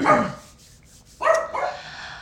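A dog, a puppy walking by, barks sharply a few times, one bark up front and then a quick pair about a second later, fairly loud.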